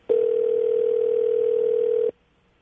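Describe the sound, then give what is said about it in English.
A single steady electronic ring tone over a phone line sounds for about two seconds, starting and stopping abruptly, then falls silent, on a recorded call from White House press secretary Josh Earnest about the Medal of Freedom. No one speaks. “the phone call was actually recorded. And this is the recording of him getting the note, getting the call.”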